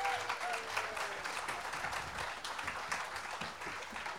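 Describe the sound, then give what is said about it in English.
An audience applauds steadily for about four seconds for singer Sheila Kay Adams on the show Across the Blue Ridge, a dense, even wash of many hands clapping at a fairly loud, constant level, with no voices rising above it. “Give her a round of applause, folks.”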